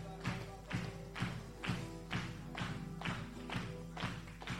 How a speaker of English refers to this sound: That's it. Let's keep that clap going.